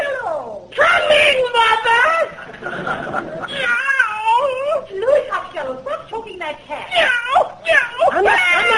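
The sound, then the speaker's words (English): A cat yowls and meows loudly and almost continuously, with long, wavering, rising and falling wails repeating for several seconds. “Well, there's no money in that cat.”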